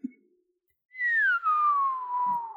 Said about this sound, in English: Do you know how to whistle? Yeah, I go like this. Perfect. I'll whistle and you whistle and then we'll find each other.